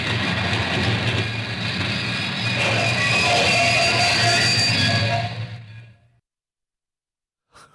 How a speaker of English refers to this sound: That was a car crash, or was it a train crash?